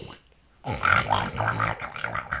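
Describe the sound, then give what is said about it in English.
After a brief quiet moment, a human voice lets out a rough, raspy run of low grunts for about two seconds, imitating the snorting grunt of a Minecraft Nether pig. “Dude, I know you don't play Minecraft religiously, but you kind of sound like that Nether pig.”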